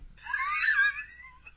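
A single hiccup that comes out as a drawn-out, high, whiny vocal sound, almost like a short cry, lasting under a second with no talking around it.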